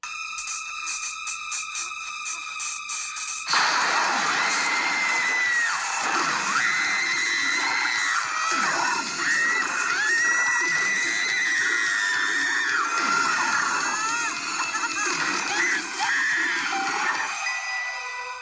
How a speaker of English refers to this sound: there's many screams we could have chosen of Patricia Arquette in this episode, but this is the one you're going to hear